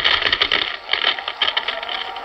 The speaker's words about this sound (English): He waits one moment, two, and then the first whining crackle of the deadly atomic power begins. There it comes.